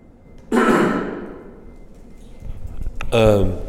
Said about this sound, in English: excuse me, about to cough. I was going to say, can you move near the mic? Don't do that while you're coughing.